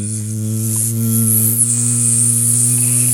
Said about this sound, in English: There's a bee in this room. Get him out of here.